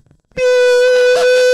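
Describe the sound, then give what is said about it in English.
A loud, sustained air horn blast starts abruptly after a brief quiet moment and holds a steady, brassy tone with rich harmonics, used like a censorship sound effect, with faint voices underneath. “For 5 minutes straight, you know that's gonna be my censorship sound.”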